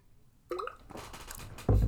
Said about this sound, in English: I really should edit that out, but I need a bit of a swig of water there.